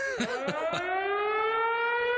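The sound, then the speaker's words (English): An air raid siren wails loud and steady, its pitch slowly climbing as it winds up, with a few brief knocking bursts near the start and no talking. “This is an air raid siren, buddy.”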